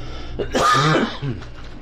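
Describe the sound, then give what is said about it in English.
A harsh cough, caused by an allergy and a side effect of heart medicine, bursts out once, followed by a shorter second cough, over a faint low background hum. No one speaks. “And I wish this cough will go away.”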